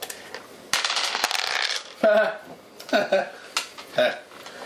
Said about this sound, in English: You're only rolling 2 dice, so you basically plus do 2 points damage.